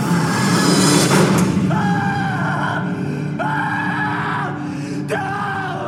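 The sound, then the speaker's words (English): A man, the film character Adam, screams in terror after the door slams shut in the final scene with Jigsaw. The cries are loud, ragged and drawn out, repeating every second or so over a dense, rumbling background. “And then Adam is just screaming the entire time.”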